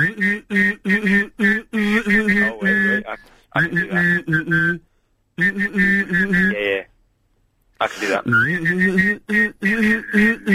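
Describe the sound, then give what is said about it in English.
A single person hums a low, steady tone while whistling a higher melody over it, the two sounding together in several sustained phrases separated by short pauses, fairly loud. “Okay, well, let me just whistle and hum very quickly for you.”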